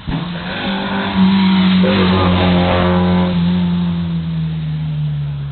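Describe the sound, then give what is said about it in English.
A loud Alfa GTV race car roars past, its engine note surging upward after a second, then holding a strong, steady drone that slowly eases off. No one speaks. “Alpha GTV coming through right now.”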